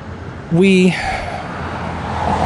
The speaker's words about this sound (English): I'm walking on Detroit now, so we're going to have more car noises here.